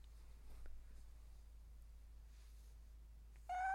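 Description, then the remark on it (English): A cat lets out one short, high-pitched squeaky meow right at the end, fairly clear, after several seconds of near-silence with a low background hum. “This a little squeak?”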